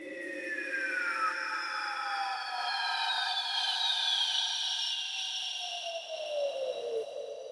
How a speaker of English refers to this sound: Imitating the sounds of the natural world is one of the most easy ways to convey the sense of outdoorness. Take a listen to this brief part. It sounds a little bit like a bird of prey screeching.